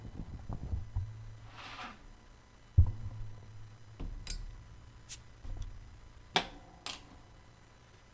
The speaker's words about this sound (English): It's got a cool little blue flag. Authentic Bavarian Festival Lager. I'm going to bust it open.